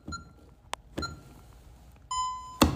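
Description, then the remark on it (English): An electronic alarm beeps: a short tone at the start, a couple of sharp clicks, then a longer steady beep near the end, broken by another click. “All right, so turn the alarm off, dismantle the alarm.”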